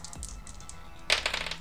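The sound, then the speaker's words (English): Dice clatter and rattle briefly on a hard surface, a few sharp clicks followed by a louder burst of tumbling knocks that settles quickly, with no voices; dice rolled to resolve a shot in a game. “Okay, let me roll these dice.”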